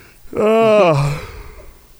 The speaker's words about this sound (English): Oh, that's a big yawn.